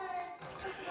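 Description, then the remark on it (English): A single sharp sneeze: a brief voiced intake that bursts into a breathy, noisy release, fairly loud. “Bless you.”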